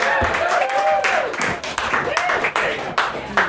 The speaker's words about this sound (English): Come on up, folks. Big round of applause.